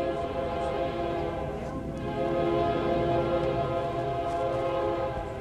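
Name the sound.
passing train with horn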